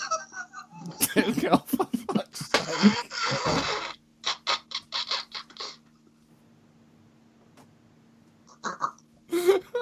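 A person blows their nose loudly and close up, with a few rough, noisy honks followed by a quick run of short snorting bursts, then near silence before a brief rustle.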